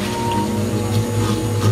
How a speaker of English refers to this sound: I put in the sound of a milkshake machine. Out of context, that whirring metallic noise might come off more like a dentist's drill. But if you've ever had a shake that's come out of one, you might associate that sound with something wonderful.